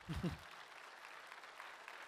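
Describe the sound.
An audience claps steadily in a wash of applause that holds at an even level throughout, applauding a speaker's point that believers are not on the losing team, with a brief burst of a voice at the very start before the clapping takes over.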